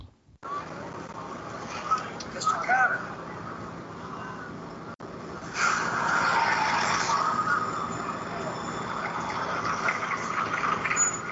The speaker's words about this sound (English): The truck driving around with its trailer doors open. Lost the package. That guy's drunk.